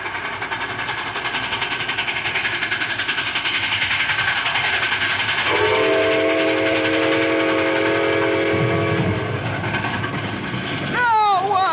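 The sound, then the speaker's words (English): An approaching steam train roars loudly, its steady rumbling chug filling the scene, while a long, sustained whistle blast sounds in the middle; a voice cuts in briefly at the end. “See if it make them come to their senses and stop this train.”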